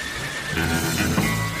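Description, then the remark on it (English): A horse neighs in a single loud, drawn-out whinny with a rough, buzzing tone that holds for more than a second, then trails off. No one speaks. “His feet are in the stirrups, and he's ready to ride.”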